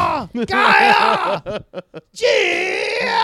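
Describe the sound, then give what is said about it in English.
A voice imitates a man screaming angrily at a landlord through her door: two loud, strained, wavering yells, broken up by a few short choppy bursts in between. “and he started screaming at our landlord through her door.”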